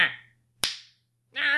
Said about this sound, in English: Slapped that Martian upside his greasy little cock cheese face.